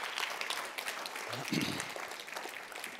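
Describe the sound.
A crowd claps steadily in a dense, continuous patter that fills the whole stretch, with a brief voice calling out partway through.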